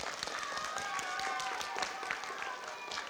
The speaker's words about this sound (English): Round of applause.